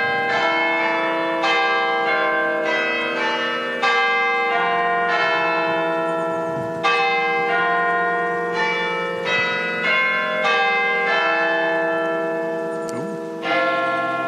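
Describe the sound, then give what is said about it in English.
The Minster's church bells, at a Gothic church, ring out loudly on the hour in a steady sequence of strikes, one bell missing from the usual peal, each tone overlapping the long, shimmering decay of the last. No voices are heard over the bells. “There's one bell missing on that one.”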